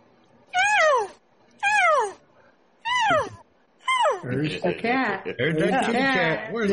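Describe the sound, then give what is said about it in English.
Three loud, drawn-out meows with falling pitch, evenly spaced, followed by a busier run of wavering cat-like cries. The sounds are imitated by a human voice rather than made by a real cat. “There's the cat.”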